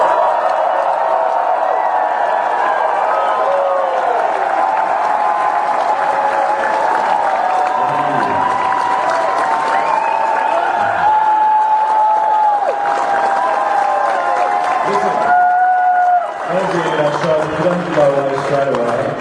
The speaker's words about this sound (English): Ladies and gentlemen, what about a big round of applause for all the performers tonight?